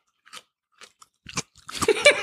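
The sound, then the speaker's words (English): A crunching bite into a spicy pickle: a few faint clicks first, then a sharp snap, followed by a run of loud, wet chewing crunches. “You got the crunch?”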